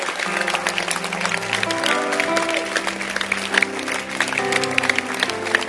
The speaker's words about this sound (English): Clap your hands.